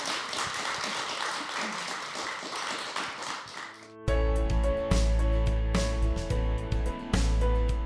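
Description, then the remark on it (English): An audience at Oasis Church Bath claps steadily for about four seconds, a dense patter of many hands, before it cuts abruptly to loud music with a deep bass line and sustained tones. “And maybe we could just give them a round of applause again.”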